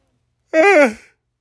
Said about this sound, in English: That's three. That's three more than I think I've ever yawned on this podcast. But again, I'm lying down because my back is in shambles.